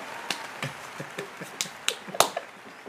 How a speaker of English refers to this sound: And so just for us making it to the 100th episode, Just put claps.